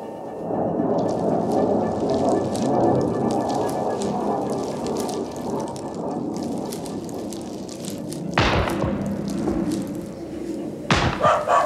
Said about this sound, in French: Détonation lointaine. Un chien répond. Ces détonations et ce chien qui répond forment un bloc.